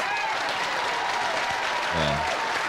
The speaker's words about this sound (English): But before we get started, I've been asked to do an applause check. So could everybody applaud spontaneously, please?